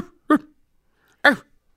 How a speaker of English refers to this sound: He'll like kind of bark, cough at you like, I want your attention.